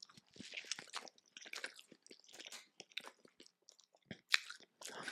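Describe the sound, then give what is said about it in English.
Someone bites into and chews a King's Deli sandwich with Thousand Island dressing, with irregular moist, crunchy mouth sounds and soft smacks over several seconds, and one sharper crunch near the end. No one speaks. “That's a good sandwich.”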